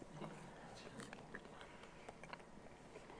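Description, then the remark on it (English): Steady chewing of a ham muffin, with small moist crunches and smacks recurring every fraction of a second; quiet overall with faint background hiss and no clear talking. “I'm sorry for the chewing.”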